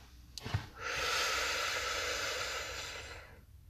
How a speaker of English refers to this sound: So we take that big deep breath in.